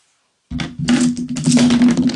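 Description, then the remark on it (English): After a brief silence, a handful of dice is thrown hard onto a table for a speed roll in a board game, erupting into a loud, sustained clatter of rattling and tumbling with a low resonant hum underneath, no voices. “Like, threw all the dice at us. Really fast!”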